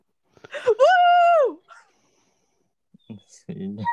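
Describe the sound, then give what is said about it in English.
A dog lets out one drawn-out, whining bark, nearly a second long, then goes quiet before a person starts talking. “Oh, the dog agrees with me.”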